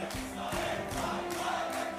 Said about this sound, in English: The crowds chant Bibi, King of Israel.